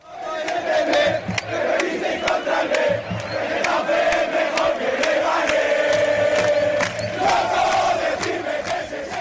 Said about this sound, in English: You could hear the Getafe fans in full voice there singing Getafe is better than Leganés.